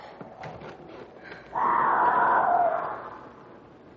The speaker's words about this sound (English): Johnny, what's that? That's a cougar.